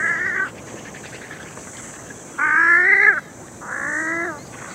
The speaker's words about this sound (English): And of wood ducks chatting.